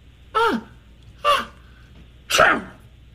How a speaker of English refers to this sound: Here's sneeze number four.